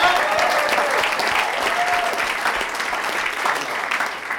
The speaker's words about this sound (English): Vietnam, clap it up for Vietnam. Mexico, clap it up for Mexico.